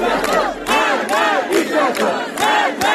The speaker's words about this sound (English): They're chanting death to the dictator and were met with tear gas and water cannons in what's being called one of Iran's most violent protests.